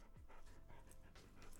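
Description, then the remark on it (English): A female dog, Sally, pants heavily and steadily, quick breathy huffs repeating in a fast rhythm for the whole moment, with no voices over it. “You just hear her fucking breathing in the back.”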